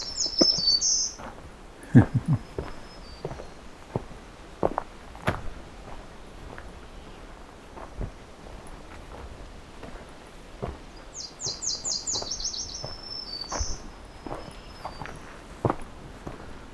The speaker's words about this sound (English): Very bright and cheery sounding, black-throated green.